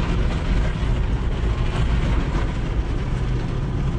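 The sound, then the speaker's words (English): Automatic car wash machinery, with water jets and brushes, runs in a steady, loud mechanical roar with a deep rumble and hissing spray, going into the rinse cycle, unbroken for the whole stretch and with no voices. “Now we're going into the rinse cycle.”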